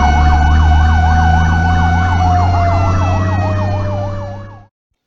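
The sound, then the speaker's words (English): A fire truck siren wails in rapid rising and falling sweeps over a heavy engine rumble as it comes to put out a fire, loud, cutting off abruptly near the end. “Did you say that the fire truck would come to put the fire out?”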